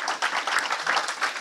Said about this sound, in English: Can we get a round of applause, everybody?